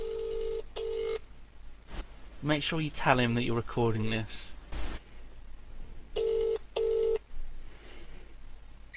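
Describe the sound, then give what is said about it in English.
A phone call to Sips rings out on the line: two pairs of steady, buzzy double-ring tones, one at the start and one near the end, with a person talking in between. “I could ring Sips.”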